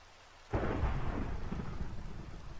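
Steady rain hiss that swells abruptly after a moment of near quiet, joined by a deep, rolling rumble of thunder, continuing loud and dense to the end. No one speaks.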